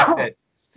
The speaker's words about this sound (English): I'm having a sneeze attack.